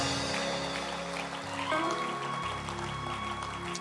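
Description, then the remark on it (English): An audience at a church communion service claps steadily, a dense crackling wash of many hands sustained for a few seconds, with a low hum and faint tones sounding underneath. “Why don't you clap your hands properly for the message you have just heard tonight?”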